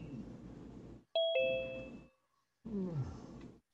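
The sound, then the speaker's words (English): A two-tone electronic chime, signalling a caller joining, rings out clearly, a bright ding followed by a lower, lingering tone, with background murmur and noise before and after. “Wait. I hear a bell. We have JP's Lawns and More joining us.”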